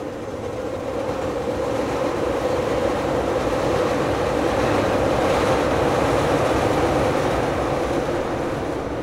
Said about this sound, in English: And the something that I've learned is it's hard to talk over the L train. It is hard to talk over the L train.